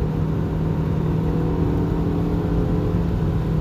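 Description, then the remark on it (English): A car engine runs loudly and continuously, a low rumbling drone with a steady humming tone, with no one speaking. “Let's go, car.”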